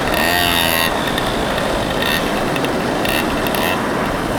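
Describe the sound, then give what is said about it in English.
Loud city street traffic on Mission Street, with a heavy vehicle's engine rumbling and rattling, a brief whining tone at the start, then a steady mechanical clatter of Muni buses moving past. “Stop some muni buses.”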